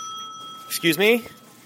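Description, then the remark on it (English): A single bright ding from a bakery counter service bell rings out and lingers briefly, fading as a voice starts speaking. “I'm going to ring the bell.”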